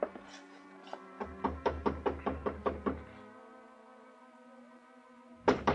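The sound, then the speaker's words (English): A series of firm knocks on an apartment door in an apartment house, starting with a few spaced raps then a quick run of about eight evenly timed knocks, clear over a low musical hum. “I paid off the taxi, walked 3 blocks to Carla's apartment house, climbed the stairs, and knocked on her door.”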